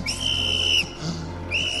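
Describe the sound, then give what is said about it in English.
A shrill whistle is blown in two loud blasts, a long steady one followed by a brief pause and a second blast that is cut off, over a faint low hum. “Yes, I'm gonna blow my whistle.”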